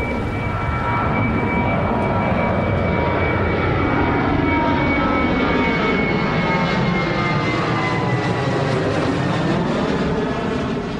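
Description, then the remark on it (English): A jet plane roars loudly overhead above Neptune Road in a Boston neighborhood, a dense, steady rumble with a whining high tone that slowly shifts in pitch as it passes, with no voices. “Planes still roar over Neptune Road today.”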